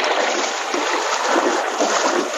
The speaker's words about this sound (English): The door was closed, but King worked it open with his paws and raced across the open deck toward the stern of the ship. Without hesitation, he leaped the rail and plunged into the swirling waters below.